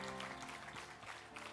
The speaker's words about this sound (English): Can you clap your hands to the Lord Jesus just one more time before you sit down?